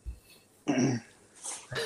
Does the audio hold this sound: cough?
yes